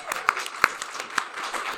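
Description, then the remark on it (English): A short burst of audience applause at a live show, welcoming first-time attendees: many overlapping hand claps in an uneven patter, with a few sharper, louder claps standing out, steady and moderately loud for under two seconds. “Round of applause.”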